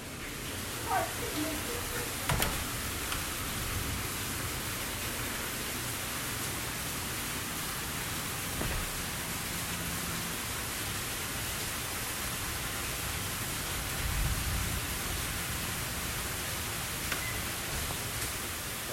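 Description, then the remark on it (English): A steady, even hiss of rain runs throughout at a constant level, with a low rumble underneath and a few brief clicks or taps scattered across it. “Part two of rain sounds.”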